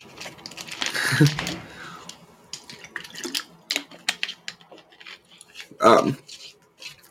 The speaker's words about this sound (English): I'm going to drink some more water.